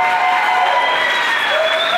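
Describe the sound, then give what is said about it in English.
A crowd applauds the panelists at the Immersive Meetup, steadily, a dense wash of many hands clapping at once, with a few faint cheers and whistles rising above the sustained clapping. “Give a big clap to our panelists.”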